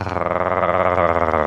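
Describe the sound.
A person imitates a low, growling purr like Chewbacca about the Laugo Arms Alien handgun, a steady rumbling vocal sound held for about a second and a half, with a fluttering rasp at the start and end. No words are spoken.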